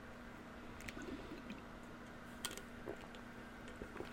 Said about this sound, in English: All right, I had to drink. I take a little sip of water there.